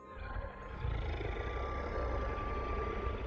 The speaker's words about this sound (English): The ghastly woman reached out one finger to touch my face, and a deep growl bellowed out from the woods beside me, just out of my view.